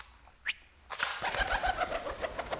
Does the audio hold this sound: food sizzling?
no